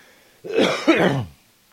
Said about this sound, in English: Damn it. Fucking coughing.